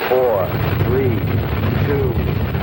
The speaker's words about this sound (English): My biggest remembrance about Saturn V was the noise. Oh, and there's the rumble in that building. There's no way that you could simulate or train for the noise that that beast put out. This building is shaking under us.